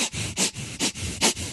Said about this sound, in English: Like breathing really small amounts in and out of my nose and dragging myself to the side of the pool.